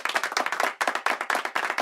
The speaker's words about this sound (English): Yeah, applause.